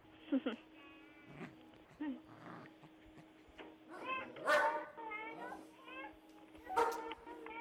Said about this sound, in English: My dog's usually not this ferocious, so I apologize.